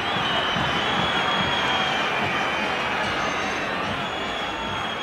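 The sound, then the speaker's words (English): A huge football stadium crowd roars continuously after a missed shot, with shrill whistles piercing through and a mass of jeering voices, loud and sustained with no pause. “And this is when the crowd just starts whistling and heckling.”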